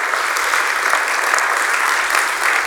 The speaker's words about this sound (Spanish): Y la iglesia dice, dar un aplauso al Señor si usted ha recibido la enseñanza en este día.